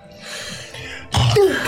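A single sudden sneeze bursts out after a second of quiet, a loud, breathy, wide-band blast with a brief voiced tail, no talking.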